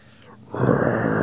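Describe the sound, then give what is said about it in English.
A man's voice lets out a loud, sustained guttural roar, a vocal imitation of a lion, rising abruptly after a brief quiet breath and holding steady to the end. “Lion?”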